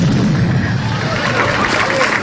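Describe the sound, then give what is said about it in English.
A loud, muffled explosion of three explosive charges at the end of a rock band's performance as they destroyed their instruments, caught on videotape: a dense low-fi wall of rumbling noise with crowd commotion mixed in. “suddenly there was a tremendous explosion caught on videotape.”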